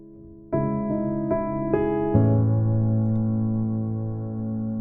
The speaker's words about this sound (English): We're in a dark room. That hum you hear? It's a large computer. It's 1977.